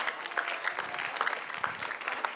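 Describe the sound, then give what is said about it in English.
An audience claps steadily, many hands blending into a dense, bright patter of overlapping slaps with a few sharper beats standing out, at an even moderate level with no voices. “If somebody is not clapping, check them very well.”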